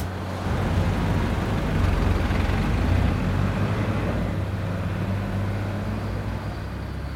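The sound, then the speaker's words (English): Trucks rumble steadily along a road, a loud, continuous engine drone with deep low-end hum and broad road noise throughout, easing slightly near the end. “We've come to a fork in the road. The trucks are splitting up.”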